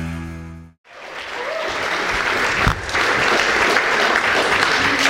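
A tonal musical hum cuts off abruptly, then an audience breaks into sustained, steady applause, a dense wash of clapping that stays loud and even to the end.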